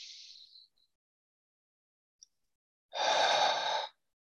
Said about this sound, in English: Just being connected to the breath, watching the breath, learning the breath, see how it flows in and out of your body, see how every breath is different. And then consciously breathing.